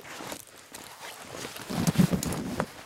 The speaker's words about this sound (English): Reader, try stomping your feet. These boots are made for stomping and tromping. They feel like a pair of very good hiking boots.